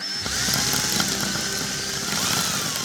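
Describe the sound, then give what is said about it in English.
A power drill whirs steadily and loudly for a few seconds during construction work, its motor pitch wavering slightly with a buzzing mechanical edge, with no voices. “I love daffodils and power drills.”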